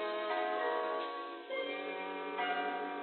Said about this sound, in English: From the darkened stairway, the great clock chimes out the hour, 3:00.